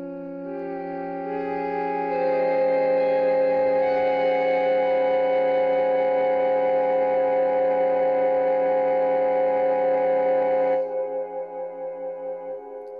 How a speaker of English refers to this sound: That is a mishmash of all nine of the solfeggio tones played at once. Very good horror film soundtrack, or Hitchcock, Alfred Hitchcock kind of vibes.